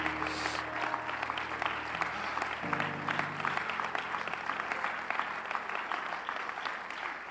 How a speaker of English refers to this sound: Come on, clap your hands unto the Lord right now.